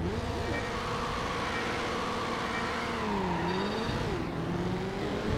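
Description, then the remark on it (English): A racing car engine from a video game drones loudly and continuously, its pitch climbing and dipping as it revs and shifts, with no voices over it. “So you beat my time by 30 seconds on this one because I hate this car.”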